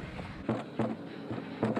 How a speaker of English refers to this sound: Now we're going into my house. We're knocking on the door, kicking on the door.